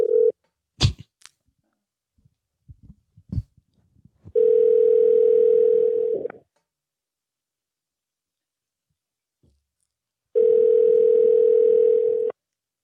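A telephone ringback tone sounds twice, each steady buzzing ring lasting about two seconds with a long silent gap between, after a few sharp clicks and taps at the start.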